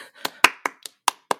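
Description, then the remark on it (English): A single person claps their hands six times at a steady, slightly slow pace. Each clap is sharp, with brief silence between them and no one joining in. “See, it doesn't work because I don't have like 100 other people to start to join in on the clap, you know?”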